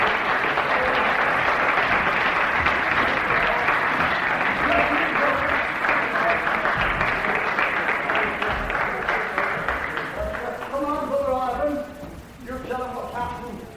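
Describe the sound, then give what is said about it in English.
An audience claps for brothers coming forward, continuously in a dense, steady wash of applause for about ten seconds, then it thins and fades as voices start speaking over the last few seconds. “Give them a clap.”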